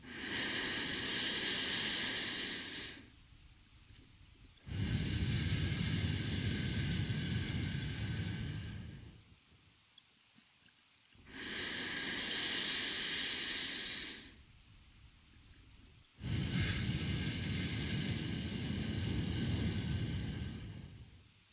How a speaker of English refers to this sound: Breathe deeply in. And then slowly exhale through your mouth. Let's do that a couple more times.